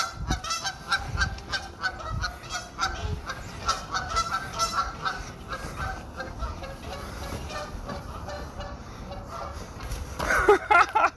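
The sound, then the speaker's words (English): A goose on a pier honks loudly and repeatedly, harsh rapid calls overlapping one another, with some agitated human talk mixed in as a person confronts and kicks the goose. “I just got kicked off a pier by a goose.”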